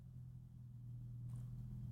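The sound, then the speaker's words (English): A loud car engine, an Evo, drones outside with a deep, steady rumble that swells slightly toward the end, with no one talking. “What the fuck is that outside? A Formula One car?”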